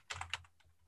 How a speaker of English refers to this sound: We've gone upscale with our podcast sound effects now, so it sounds like we've got typing noises and clicking noises.